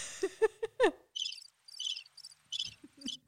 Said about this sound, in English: Awkward. You know, we need crickets. I know, right? We need crickets.